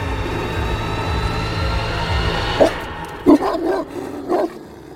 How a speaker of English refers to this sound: His own 50 hounds pursued him, baying and biting at his legs while he ran in terror.